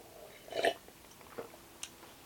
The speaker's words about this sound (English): hold on, let me drink some water. My mouth is getting dry.